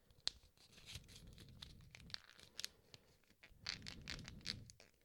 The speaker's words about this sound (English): I just folded it again. You want another fold? I think the most folds you can get is 7 or 9 for just a generic 8.5 by 11 piece of paper. You can't really fold well beyond that because the paper gets too rigid, too thick to fold.